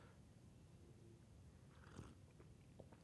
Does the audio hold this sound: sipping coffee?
yes